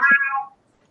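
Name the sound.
cat meowing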